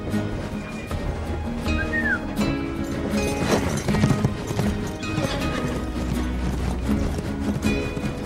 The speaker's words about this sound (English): And then the reason that the horse comes running after the train for Ben Wade was that Ben Wade whistled.